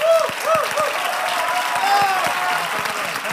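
Loud audience applause for a contributor fills the whole stretch, a dense, steady wash of many hands clapping with a few brief whistles or cheers rising above it.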